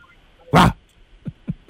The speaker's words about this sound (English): I've got my dog Buster on. The noise room. Just, if I can pop you onto him for a second. This is the dog. Can you hear him?